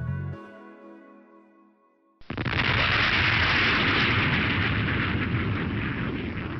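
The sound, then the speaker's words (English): A sonic boom from a supersonic jet hits abruptly and loudly, then rolls on as a sustained, roaring rumble for several seconds, following a brief fading musical tone. “Supersonic jets are known for their explosive thunderclap booms. And in just a few years, you might begin to hear that sound a lot more often, because supersonic travel is back.”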